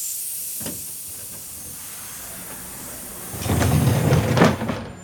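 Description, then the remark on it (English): A steam train hisses steadily as it pulls up to its first station, Chicago, with a brief burst of venting early on and a louder, longer rush of steam near the end as it comes to a stop. No one speaks. “In fact, we're pulling up to our first station.”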